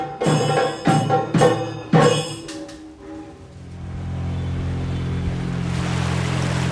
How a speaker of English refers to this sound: I'm cruising down a wide canal in a low-slung boat called a shikara.